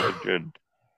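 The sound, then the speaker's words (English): A single, fairly loud sneeze bursts out, a voiced intake followed by a sharp noisy blast, then a small click and quiet. “Bless you. Bless you”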